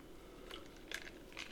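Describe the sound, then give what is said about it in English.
Someone sips Wendy's iced tea from a cup: three short, soft slurping bursts with a faint crackly rattle, spaced about half a second apart, quiet, with no talking. “So, as I take a sip of my Wendy's iced tea”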